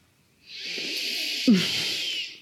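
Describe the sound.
A person imitates snoring with a long, raspy, hissing breath lasting about two seconds, broken midway by a short snorting catch. Fairly loud, with no talking.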